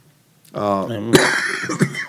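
A short voiced throat sound leads into a rough, raspy cough burst, fairly loud, with no words spoken around it.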